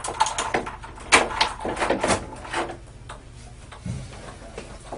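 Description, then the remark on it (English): A door is opened: a run of sharp clicks and clunks from the latch and hinges, followed by a softer low thump and some quiet rustling, with no voices. “The sound of the door opening would have been a pleasant relief from the monotonous cycle of Rodarte's own thoughts”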